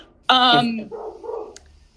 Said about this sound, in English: And of course, this is when my dog decides to speak.